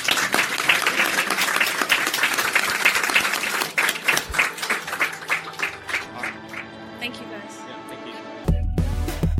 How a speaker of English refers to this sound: Big round of applause for our panelists.